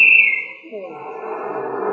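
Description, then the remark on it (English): A sharp, shrill referee's whistle blast rings out at the start: the final whistle of a game between Blankhurst and Van Bursen. It trails off as a noisy crowd rumble swells up underneath and carries on to the end. “And then the final whistle blew.”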